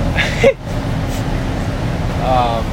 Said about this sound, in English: Anything else interesting going on the bus? Not particularly. I mean, it's shaking.